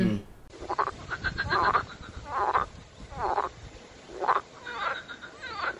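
A frog croaks about six times in a steady, rhythmic series, each call a raspy, buzzing burst at moderate volume, with no talking over it.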